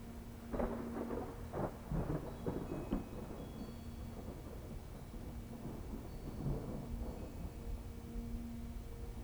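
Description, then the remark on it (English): Low, distant thunder rumbles and rolls, echoing faintly over a steady hiss of rain, with a few sharper crackles early on before the sound settles into a long, reverberating grumble. “You can see lightning in their depths, and you can hear reverberating thunder in the distance.”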